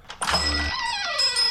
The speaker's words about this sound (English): That's the Boreo Bell, apparently, because that's spelled incorrectly as well.